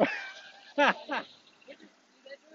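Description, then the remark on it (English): A dog being walked by its owner whines in a high, drawn-out tone, then lets out two sharp barks in quick succession, followed by a few softer yips and whimpers fading into quiet outdoor background. “I'm just walking my dog, but I'm looking at that going, that looks like a real person in there, man.”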